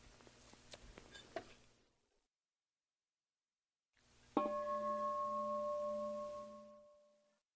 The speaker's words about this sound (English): So maybe there's a thought in the mind, Jean's ringing the bell, or whatever, why is she doing that? Or maybe they're just receiving the sound.